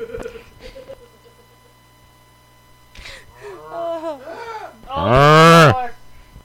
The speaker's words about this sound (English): Moaning and groaning sounds, high pitched bleats, loud bellows, and rumbling roars. These are all the sounds camels make.